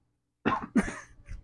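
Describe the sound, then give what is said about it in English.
A person coughs twice in quick succession, followed by a softer trailing cough, each burst harsh and breathy, heard on its own without any talking. “I know, it's because I have to cough.”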